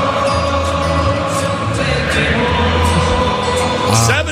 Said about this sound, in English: And here's the crowd from Munich.